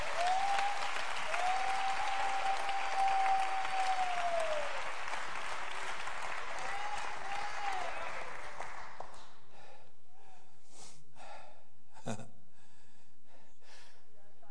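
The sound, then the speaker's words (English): An audience claps hands hard unto Jesus Christ in loud, dense, sustained applause for about nine seconds, with a high drawn-out voice cheering over it, then it abruptly drops to scattered faint sounds and a sharp knock. “And clap your hands hard unto Jesus Christ.”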